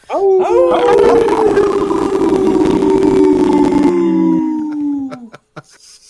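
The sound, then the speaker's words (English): A group of people howl together like wolves, several long overlapping sustained cries rising and sliding down in pitch, loud, lasting about five seconds before trailing off into scattered noises. “Sounded like a bunch of bubbly wolves, man.”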